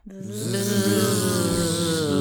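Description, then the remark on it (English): Several people wearing bee costumes buzz together in imitation of bees, a loud, steady droning hum of layered voices at slightly different pitches, sustained for about two seconds without words. “Guys, make bee noises.”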